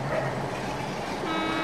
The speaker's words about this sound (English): So the two of you are walking out from the Iacon Speedway when a familiar-looking bus pulls up next to you guys.